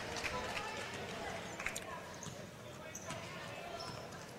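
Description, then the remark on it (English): A basketball bouncing rapidly as a player dribbles it down the floor in a Titans game, its quick thuds mixed with running sneaker squeaks and a steady arena crowd murmur in the background. “I did, and I think you can see why as she dashes with the ball down the floor.”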